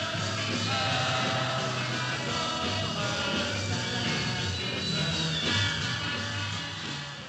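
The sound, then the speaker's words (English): A packed theater of girls screams at a band concert in a dense, continuous roar that stays loud and overwhelming throughout, easing off slightly at the very end. No voices talk above it. “playing in front of a theater packed with screaming girls as a full-fledged member of the greatest band of all time.”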